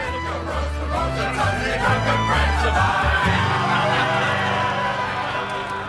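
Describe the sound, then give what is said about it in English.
A fantasy halfling campfire sing-along soundscape from BattleBards for tabletop RPGs: a group of voices singing together over a steady, stepping low melody, with a busy murmur of chatter and movement at an even, moderate loudness throughout. “Even a halfling campfire sing-along.”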